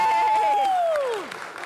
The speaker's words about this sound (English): And, yeah, come on, that's when you clap. Yay! Okay.